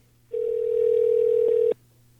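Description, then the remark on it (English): A telephone dialing tone plays as a call is dialed: one steady, unbroken mid-pitched electronic hum lasting about a second and a half, fairly loud, then cutting off abruptly. No one speaks. “So if you don't mind, indulge me a little bit and let's dial Reno.”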